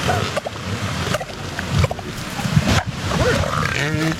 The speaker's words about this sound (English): Okay, this is the most odd elephant mating, seal mating I've ever heard. Not like I hear a lot, but this is one of the most weirdest animal mating noises I've ever heard, right? It starts with a dirt bike,